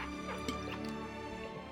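A swig from a heavy pink water bottle, exaggerated for effect, with soft wet sloshing and small liquid clicks over about two seconds, fairly quiet and alone without any talking.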